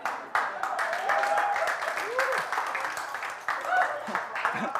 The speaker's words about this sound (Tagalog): Pilit na yung palakpak niya.